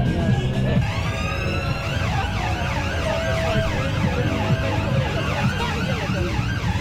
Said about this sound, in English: Right, well, don't worry, nothing horrible has happened. This is an ambulance, which is one of the floats. So of course, it's got its sirens going, which is interesting.